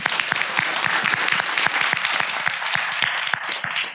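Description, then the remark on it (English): A crowd in a church applauds steadily for an article, dense overlapping claps forming a loud, even wash of sound for several seconds with no voices over it. “I hope it goes viral, and I think you deserve an applause for it.”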